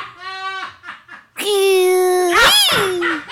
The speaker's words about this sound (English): The scream of the turtle. That is the funniest thing I've ever heard.